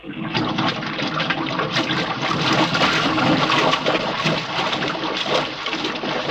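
A loud, steady rush of water being pumped out of an airlock chamber, a continuous churning gush with no pauses for several seconds and no voices.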